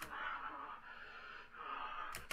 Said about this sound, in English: This dude is breathing heavy.